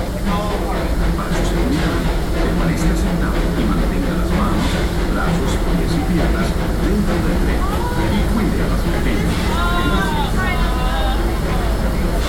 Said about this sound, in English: To those just joining us, welcome aboard the Disneyland Railroad. To ensure a safe ride, stay seated with your hands, arms, feet, and legs inside the train.